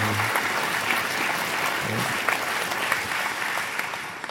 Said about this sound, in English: That deserves your applause.